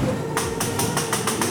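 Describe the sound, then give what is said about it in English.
A ghost train ride's ratchet clacks steadily as it pulls the car along, a quick series of sharp, evenly spaced clicks over a low mechanical rumble. “That's the ratchets pulling you through.”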